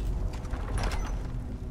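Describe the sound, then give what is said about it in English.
A heavy iron door grinds open with a low, rumbling mechanical scrape and faint ratcheting creaks, steady for under two seconds with no voices. “Okay, nothing else here. Let's save an open iron door.”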